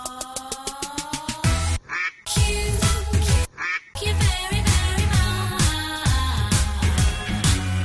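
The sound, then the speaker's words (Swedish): A short, loud musical jingle built from duck quacks, introducing the weekly segment Kvack You, with punchy rhythmic beats, brief gaps of near-silence between phrases, and a bright, busy ending. “Och nu är det dags för veckans Kvack You.”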